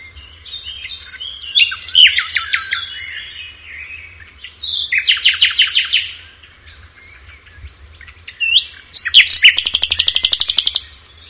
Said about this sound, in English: Okay, so here's the first one. This is a nightingale.